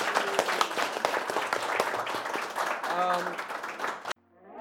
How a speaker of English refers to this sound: So a round of applause.